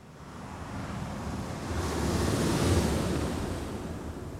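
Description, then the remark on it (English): Steady ocean surf rolls in at a beach in Búzios, a broad continuous wash that swells louder in the middle as a wave breaks, with some wind rumble and no voices. “And now let's get back to the sound of the ocean in Búzios.”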